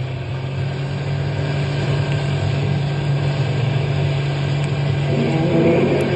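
A car engine drones loudly for several seconds as the driver steps on the gas to flee a pursuing ranger's car and get out of a park, a steady low rumble with a slight swell toward the end, with no voices.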